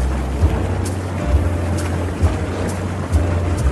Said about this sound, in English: I hear bubbles in the background. Can anyone hear that? Bubbling sounds.